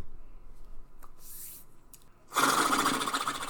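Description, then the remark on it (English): A person imitates a horse with their mouth: a soft breathy hiss, then a loud, rapidly fluttering lip-buzz snort that sustains for about a second with no talking. “I can make horse sounds with my face.”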